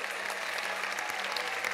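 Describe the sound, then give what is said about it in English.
A crowd at a worship service claps hands steadily in worship, a dense continuous patter of many overlapping claps at a fairly even level with no voices standing out. “For 30 seconds more, can you clap your hands and worship Him?”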